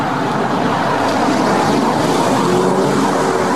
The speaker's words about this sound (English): Hold on. Car.